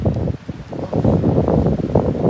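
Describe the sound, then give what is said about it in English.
Wind buffets the microphone outdoors on a windy day in a steady, loud low-end roar with gusty surges, muffled, and no clear voices. “I think we better if we go inside because the wind. It's windy.”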